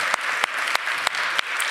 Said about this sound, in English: we also have 13 students who will be receiving communion for the very first time. So let's give them another round of applause.